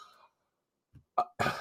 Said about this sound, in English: Excuse my cough.